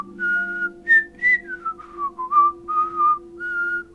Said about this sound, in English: We walked in relative silence, except for his whistling.